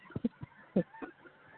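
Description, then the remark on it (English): Geese honking in a quick series of short, nasal calls, some doubled, with a brief pause before a couple more; the honks sound fairly quiet, with no one speaking. “oh, my God, did you hear these geese?”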